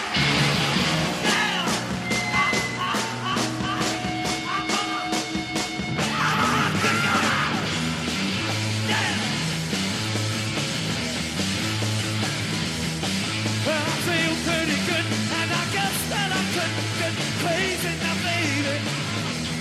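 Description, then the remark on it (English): A loud, dense live rock band plays at full volume with distorted guitars and pounding drums, while a raw, strained vocal screams and yells over the chaotic, relentless wall of sound. “It's a live performance as well, so it sounds really good.”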